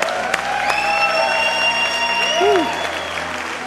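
An audience claps, cheers and yells hallelujah after a prayer in a steady, dense wash of applause, with scattered whoops rising above it and faint sustained tones ringing underneath.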